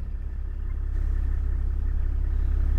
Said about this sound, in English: We're driving through this really tall, thick grass that kind of enveloped the car. It was almost like we were driving through a cloud. So this is the Kalahari sour grass. It's real thick.